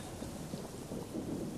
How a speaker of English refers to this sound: Big thunder clap. 3, 2, 1.